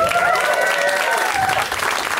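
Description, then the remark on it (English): Steady audience applause at a comedy show fills the whole stretch, a dense, even wash of many hands clapping at constant loudness, with a faint whistle or cheer tone running through it. “I'm so glad you're already clapping because we got a great comic up first.”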